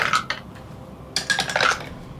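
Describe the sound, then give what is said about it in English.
Two short bursts of dice clattering and rattling across a hard table surface as players roll a stealth check in a game, the second a bit longer and busier, with a quiet pause in between and no one talking. “My dice are really into threes.”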